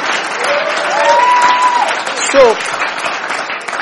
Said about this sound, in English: Can you clap for me for preaching to you? Let's clap for me.